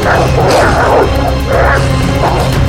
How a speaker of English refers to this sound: Can you hear that? I was hoping it was just me. There, see? Through the fence. Wolves!